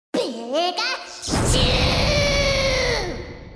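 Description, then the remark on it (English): A squeaky, high-pitched cry of Pikachu from the video game Super Smash Bros. in two bursts: first a rising, warbling chirp, then a longer, loud, sustained squeal that fades out, bright. “And imaginary, like Pikachu in Super Smash Bros.”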